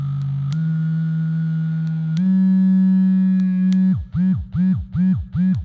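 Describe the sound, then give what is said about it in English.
A sex toy motor buzzes alone with a steady, loud low hum that steps up in pitch twice, then switches to a rhythmic pulsing pattern of about five swelling throbs. “And some of them come with motors as well, so be able to hear the thrilling... The all-important buzzing.”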